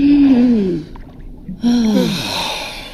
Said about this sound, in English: Relax. Take a deep breath.